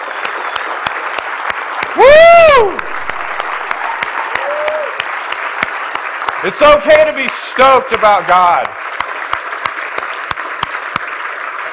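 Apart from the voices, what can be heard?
audience clapping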